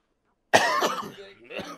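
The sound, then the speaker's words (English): A loud cough bursts right into a microphone after a brief silence, harsh and breathy, followed by a rougher throaty trailing cough. “Just coughing on the mic.”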